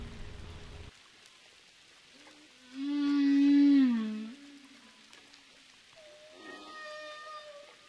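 Humpback whale song recorded underwater at Roca Partida: a loud, drawn-out moaning call with rich harmonics that bends in pitch, followed by a higher tonal whine, over faint crackling background hiss.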